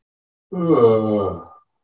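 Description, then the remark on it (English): A single deliberate, drawn-out voiced yawn, done as a yawning practice, about a second long, rising into an open moaning tone and sliding downward as the breath runs out. It is clear, with no talking around it. “What you might notice with the yawning is that as you yawn, your voice will also become deeper in your body.”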